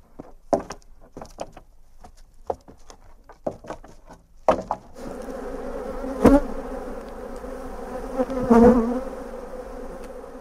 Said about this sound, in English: Well, we started keeping a couple just ourselves for the honey, but bees have a way of multiplying, and we have seven colonies now, and I try to sell enough honey to cover the cost of increase of wood for the hives, which I make, and wax and frames.